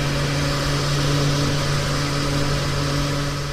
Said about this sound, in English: So technologies like chip and pin or Dyson hand dryers or things like filling my car with petrol.